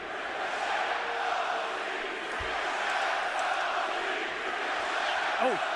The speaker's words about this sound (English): Oh. I can't tell what the crowd's saying.